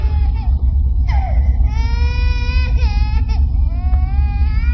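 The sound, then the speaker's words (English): A baby cries in long, wavering high-pitched wails, its voice rising and falling over a steady low rumble. No other voices are heard. “And you made a baby cry.”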